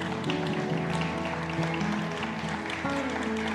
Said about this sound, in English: You're all clapping